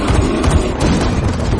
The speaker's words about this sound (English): Angle on Thornton in entryway firing. Her aim seems high.